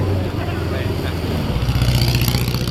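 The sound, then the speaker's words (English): A race car engine roars loudly and steadily, its pitch climbing and growing stronger in the second half as it approaches fast, with faint talking underneath. “Some of these cars are very difficult to suss out viewers, especially from a distance. He's coming up fast.”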